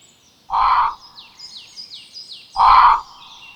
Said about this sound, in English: Apart from the loud flapping and squawking of a crow in the treetops above them, there was no one to be seen or heard in the streets now.